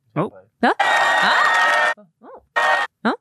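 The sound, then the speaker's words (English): Short bursts of clapping and cheering, a longer roar of about a second followed by a quick second burst, with whoops and excited vocal shouts between them. “Can you do it again? That's for you. One that was more. Your applause.”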